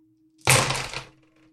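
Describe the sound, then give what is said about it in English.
Twelve dice clatter onto a hard surface in one short, dense rattling burst, fairly loud, quickly settling into silence with no voices. “Right, I need 12 dice for this.”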